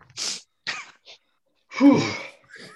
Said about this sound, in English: That makes me sneeze.